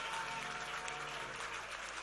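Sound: audience clapping hands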